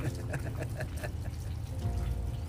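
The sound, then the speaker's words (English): Rain running off a tin roof at the Rocket Star Ranch: steady water runoff splashing and trickling, a continuous wash of dribbling drops over a low rumble, with brief brighter spatters standing out now and then. “So we got some rain coming off the tin roof here at the Rocket Star Ranch. That's what you're hearing.”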